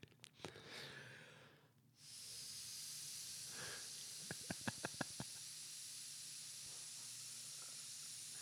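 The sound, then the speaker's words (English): A steady breathy hiss of air being blown hard into a switched-off breathalyzer to clear its sensor, holding for several seconds, with a quick run of sharp little clicks partway through. No one speaks. “Blow into it for 5 seconds with it off.”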